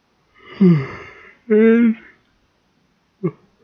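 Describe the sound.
A person yawns, a breathy drawn-in start sliding into a voiced, groaning exhale, followed by silence and a short soft vocal sound at the end.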